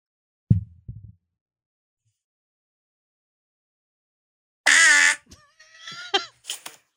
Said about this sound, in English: We get to catch up on farts from the podcast that I've forgotten about. This was sent to us May 9th, 2021. That's how far behind in the fart game we are. This person's got 3, and they named this one Blast.